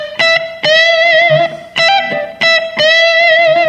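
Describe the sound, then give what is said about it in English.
A distorted electric guitar plays Example 8, a short phrase in the key of A of bright, sustained notes, with a quick 16th-note triplet at the end of bar 1 played hammer, pull, pick, with legato hammer-ons and pull-offs between picked notes and brief gaps between bursts. No voices. “The quick 16th note triplet at the end of bar 1 involves a hammer and a pull.”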